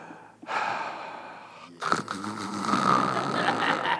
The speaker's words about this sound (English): Did I snore too loud